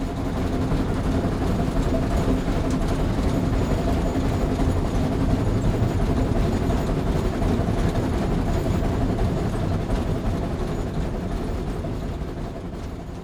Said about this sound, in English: It was a train, an old steam engine train. Now that you know, let's have another listen and you can imagine riding a train through the countryside.